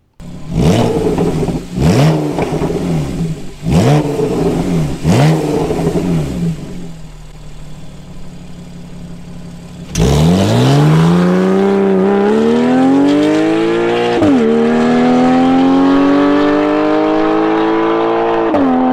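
A loud car engine with a Sol Performance exhaust, valves open, revs sharply several times, then idles briefly before roaring through a long, rising acceleration, aggressive with no talking.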